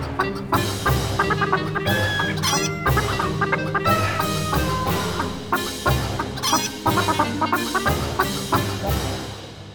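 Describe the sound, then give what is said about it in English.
A flock of chickens clucks continuously and fairly loudly, overlapping calls and short squawks piling up in a busy, restless chorus with no voices. “I think I know what's wrong with the chickens, but we can't let him know what's wrong.”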